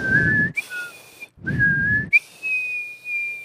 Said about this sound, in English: I mean, it's not like a harmonica where you can go both ways. It's like whistling. You can whistle by going out, and you can whistle by going in.